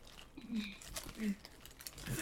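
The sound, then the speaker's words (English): Wet mouth smacking and squelchy chewing while eating grapes, a quick irregular run of moist clicks and slurps, with a few brief low murmured vocal sounds mixed in. “Cringe at the sound of like mouth smacking.”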